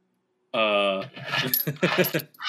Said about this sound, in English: What now? Who's counting coins?